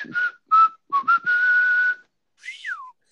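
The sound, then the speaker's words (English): Someone whistles a short song melody: a few quick notes, then a long held note, and after a pause a final note that slides downward. No one talks. “Yeah, and he whistles like a siren.”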